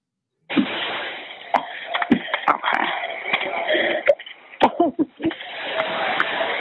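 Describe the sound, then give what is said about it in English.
A woman trapped in a smoke-filled building coughs in a string of harsh, irregular bursts between raspy, wheezing breaths while calling an emergency dispatcher, muffled and narrowed over the phone line with steady background hiss. “starts to cough as the dispatch continues with her script and you can actually hear the moment that she stuffs it up and makes no sense.”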